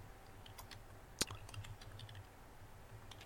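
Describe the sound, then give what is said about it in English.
Quick, irregular key clicks from a computer keyboard being typed on, fairly quiet, with one sharper louder tap partway through and a low background hum. No talking. “Yes, I'm typing it in.”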